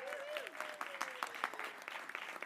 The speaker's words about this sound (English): Tonight was funded by the Royal Society of Victoria, so huge round of applause for the Royal Society of Victoria.